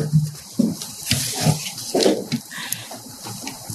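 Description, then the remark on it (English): Water is poured for a speaker at a City Club event in a steady, splashy stream lasting a few seconds, with gurgling bursts and a hollow, bubbling tone. No one speaks. “I thought we had water up here, but we don't. I'll give you water.”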